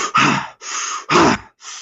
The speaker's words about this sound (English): Someone's tired and I say, right, well, you could do chest breathing for 3 breaths, right?